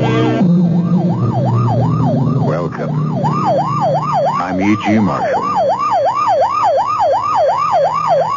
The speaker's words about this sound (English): Times I hear that sound, it still sends a chill down my spine. You know it's a police car or ambulance on the way to or from an emergency in which someone is badly hurt.